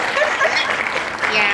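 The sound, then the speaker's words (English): A clapping sound effect inserted in a segue: a steady burst of applause from a crowd, dense overlapping claps forming a bright, continuous wash that stays loud for over a second with no talking. “I will put in a clapping feature in that segue. So pause for a clap. There we go. There's some claps.”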